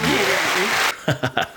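A dense wash of loud applause runs steadily for under a second, then stops abruptly with no fade, like a canned clapping effect. A few bursts of talking follow.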